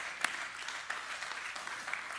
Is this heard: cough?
no